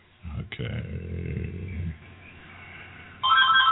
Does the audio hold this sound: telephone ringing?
yes